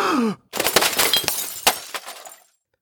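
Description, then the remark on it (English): A brief falling vocal sound, then a vase shatters with a loud crash, followed by about two seconds of scattering, tinkling fragments that fade to silence. “My happiness shattered, just like the vase.”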